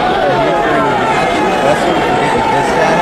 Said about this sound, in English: So like right there, he was getting like the crowd was chanting for him.